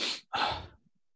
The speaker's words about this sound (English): Jesus Christ, coronavirus. No, that is not the symptom. Okay, that is just a sneeze. I need to blow my nose.